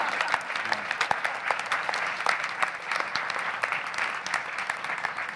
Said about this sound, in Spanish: No, con esos aplausos, hermano, no llegamos, pero para resucitar ni uno.